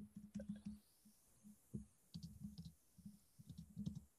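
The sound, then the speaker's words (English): Quick bursts of crisp clicking, like letters being tapped into place, come in several clustered runs separated by short pauses, with no voices present. “I can hear you clicking in those letters there.”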